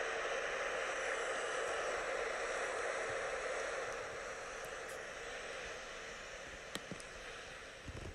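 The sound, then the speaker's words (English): A steady, hissing wash of waves breaking on a beach, continuous with no distinct individual crashes, easing slightly in loudness toward the end, with a couple of small clicks. “On the beach, you hear the sound of the water splashing onto the beach.”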